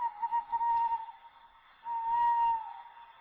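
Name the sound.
owl hoot sound effect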